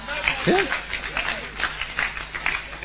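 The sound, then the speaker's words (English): An audience claps steadily for a few seconds, a dense patter of many hands at moderate volume, with a voice briefly audible over the applause. “And you didn't clap loud enough for the second time.”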